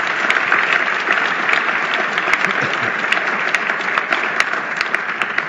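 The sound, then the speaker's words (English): Steady applause from an audience at a not-for-profit club's lunch, honouring the sponsors Kraft Developments and Policy Concepts: a dense wash of many hands clapping at an even loudness for several seconds, with occasional sharper claps standing out from the crowd. “So please, a round of applause for our sponsors.”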